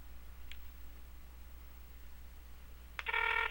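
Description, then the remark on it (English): Over a low steady hum, a faint brief blip sounds, then a loud electronic telephone ring starts abruptly near the end, heard through the line on an outgoing call. “the telephone is ringing.”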